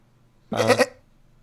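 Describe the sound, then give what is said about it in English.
A person imitates a goat's bleat: one short, wavering, nasal cry lasting under half a second, fairly loud, with quiet before and after. “I might do like a goat headbutt at the same time as I do the noise.”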